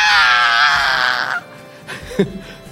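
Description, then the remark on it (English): A man lets out a loud, shrill, high-pitched scream, mimicking a frightened shriek that lasts just over a second before cutting off, followed by a few faint vocal sounds. “He's like, ah! And he screamed like a little girl.”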